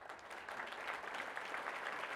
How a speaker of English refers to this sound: I feel like that round of applause is a little bit too slow.